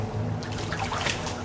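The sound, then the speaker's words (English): Water pours out of a bucket in a steady splashing stream, with a gurgling trickle running through the short stretch and no voices. “Empty out that bucket, you monster!”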